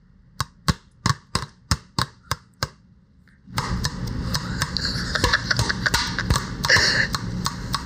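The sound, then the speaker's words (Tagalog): About eight sharp, hollow taps on a plastic one-liter bottle, done as an ASMR sound test, in a quick, even rhythm, followed by a pause and then a dense, continuous crinkling clatter of plastic. “This 1 liter bottle here is plastic.”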